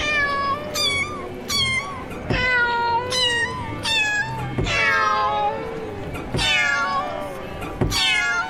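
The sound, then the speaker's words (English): A rapid run of about ten loud cat meows at shifting pitches from a cat piano, an imaginary instrument, strung together like a little tune, with sharp attacks and sliding, harmonic cries and no talking. “What you see in front of you in the large glass display case is the earliest known example of the cat piano.”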